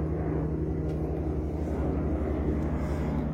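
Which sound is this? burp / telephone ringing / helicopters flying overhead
helicopters flying overhead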